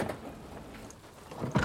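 A car door opens with a brief low rumble and soft rustling as a man leaps out of the car, then swings shut with a solid, loud thud at the end.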